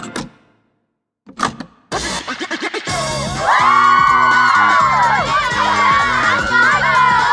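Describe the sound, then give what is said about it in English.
After a short pause and a few scattered bursts, upbeat dance music kicks in with a steady thumping beat, while girls dancing freestyle, whirling, twirling and jumping, hoot, whoop and squeal loudly over it in rising and falling cries. “In case you're wondering why the music stopped abruptly just now, it's because … just showed up and … hit the off button.”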